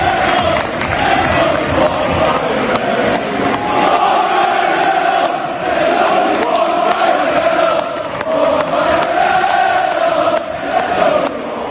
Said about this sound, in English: This is the crowd, just as Wrexham scored towards the late, and this is the crowd, because he had a corporate box and he was overlooking the Wrexham crowd.